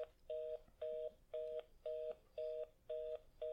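A telephone line tone pulses in an even, rapid rhythm as a toll-free 1-800 number is dialed, seven identical beeps with short gaps, steady and clear with no talking.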